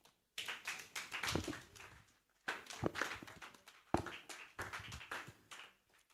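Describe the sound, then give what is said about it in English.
An audience at a Love Encounter Faith Work Ministries service claps in dense, crackling bursts, three waves of many hands with brief pauses between them, fairly quiet overall and with no voices over the applause. “Are you clapping for me or are you clapping for the Lord?”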